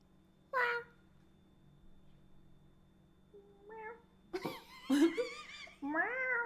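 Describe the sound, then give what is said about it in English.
A person does their best impression of a cat named Feff, with a series of drawn-out, wavering meows, starting with a short yowl, then a soft mew, followed by several louder, stretched meows. “How about you just do your best cat?”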